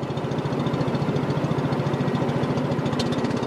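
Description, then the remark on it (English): A long-tail boat engine chugs steadily, its rapid rhythmic low-pitched pulsing unbroken and loud throughout, with no voices, as the boat heads to the Sipandon (4,000 Islands) in southern Laos near the Cambodian border. “A long-tail boat heads to what's called the Sipandon, or 4,000 Islands, in southern Laos near the Cambodian border.”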